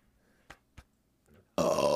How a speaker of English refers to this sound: I got a burp. Wait, it's not coming out. Wait.